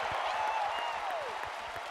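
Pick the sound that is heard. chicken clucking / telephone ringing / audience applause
audience applause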